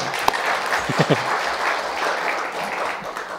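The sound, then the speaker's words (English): An audience applauds with a steady, dense patter of many hands clapping, holding at a fairly even level throughout, with a brief murmur of voices near the start. “Someone's clapping, sure.”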